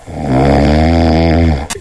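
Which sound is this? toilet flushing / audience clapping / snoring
snoring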